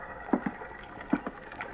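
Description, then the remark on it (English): Early in the morning, water laps against a small, ramshackle pier with a couple of beat-up boats tied to it, in soft paired slaps: two gentle knocks, a pause, then two more, over a quiet wash of background ambience. No one speaks. “Then early next morning, I went out to the little pier. It was a ramshackle affair with a couple of beat-up boats tied to it”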